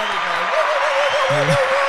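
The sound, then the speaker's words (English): Steady, dense clapping fills the whole stretch, a continuous crackle of many hands, with a few voices calling out over it. “Far out, so long applause.”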